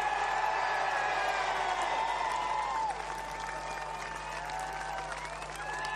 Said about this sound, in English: Gets a lovely round of applause from the crowd here at Brands Hatch.